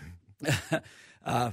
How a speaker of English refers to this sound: Excuse me, I'm coughing. And no, I don't have coronavirus.